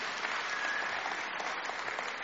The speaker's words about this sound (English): It's the only time I'm ever going to get an applause, isn't it? It goes on.